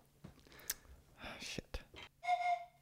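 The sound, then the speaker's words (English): A single short, shrill whistle blast rings out near the end, loud, following a stretch of soft, breathy whispering voices. “If you mention the Canucks, I blow the whistle.”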